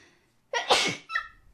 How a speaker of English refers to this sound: I'm going to sneeze.